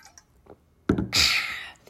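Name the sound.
speaker drinking water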